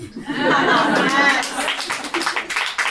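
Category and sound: crowd, smattering of audience applause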